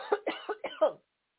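A quick burst of four harsh coughs in rapid succession, each sharp and raspy, with no talking, followed by silence.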